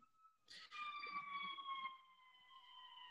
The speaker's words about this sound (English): That siren's going by my house there.